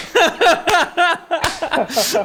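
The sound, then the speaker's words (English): A single sharp hand clap, given in appreciation of what was just said, cracks out midway through a stretch of rhythmic chuckling laughter, with more laughing and voices continuing after it. “I'm gonna give a clap for that.”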